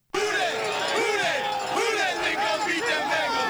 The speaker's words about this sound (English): And then, look, they actually bring up after this that the Cincinnati Bengals have a chant. I didn't know this. They have a chant which they play all playoff series. They put, like, the crowd chant it constantly. Here it is.